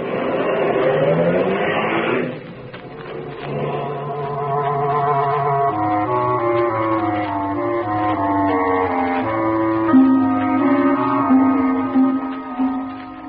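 A car engine roars and pulls away, its droning hum climbing in pitch through several stepped gear changes as it accelerates, loud and steady with no talking.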